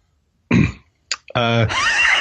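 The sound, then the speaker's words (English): Someone clears their throat: a rough, gravelly burst, a couple of short catches, then a longer strained, voiced rasp that wavers upward in pitch, fairly loud with no talking. “Are you clearing your throat?”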